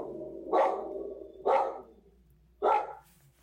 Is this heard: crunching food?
no